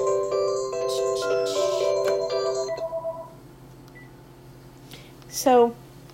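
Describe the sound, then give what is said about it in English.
A gate intercom keypad beeps out a quick run of steady electronic tones at shifting pitches for about three seconds, then after a quiet pause gives one short, loud chirp that swoops upward, as a roommate beeps at the gate and is buzzed in. “I'm just buzzing my roommate in. She's beeping the gate.”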